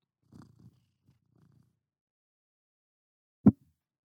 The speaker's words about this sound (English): It didn't get picked up. You just put a purr in there. They'll know what it means.